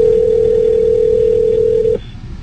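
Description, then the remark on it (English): A phone call's steady electronic tone hums at a single pitch for about two seconds, then cuts off abruptly, leaving faint background noise. There is no talking. “How you just going to make a random ass phone call?”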